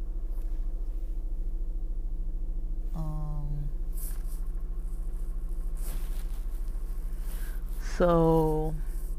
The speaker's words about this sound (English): Sorry, I'm trying to back out, and there's people just keep walking behind my car. Oh my gosh. Move.